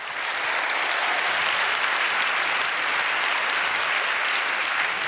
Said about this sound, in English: Let's have a warm round of applause for the Monk family and the late and great Peter Monk. Woo!